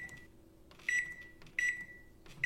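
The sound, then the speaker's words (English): A microwave oven hums steadily while sounding three sharp, high-pitched beeps at regular intervals, each one loud and clear over the low running drone. “Spooky Microwave!”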